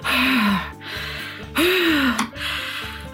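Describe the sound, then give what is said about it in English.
A voice imitates heavy panting, three or four loud, breathy gasps in a rough rhythm, some with a strained vocal edge, with no other sounds around them. “I am hiding behind a tree, heavy breathing, like...”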